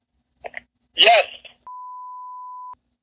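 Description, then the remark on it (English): A few brief vocal noises, then a single steady electronic ringing tone from a phone call, lasting about a second, clear and moderately loud as if over a speaker. “How come he's never answering his phone?”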